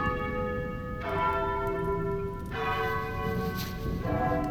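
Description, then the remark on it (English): A doorbell chimes three times at steady intervals, each ring bright and resonant with tones that hang and overlap before the next strike. No one speaks. “Someone's at the door.”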